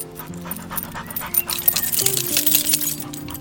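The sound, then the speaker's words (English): An old dog pants steadily in a dooryard, quick breathy huffs running throughout, mixed with soft high whimpering tones; no one speaks. “Old dog meanders dooryard.”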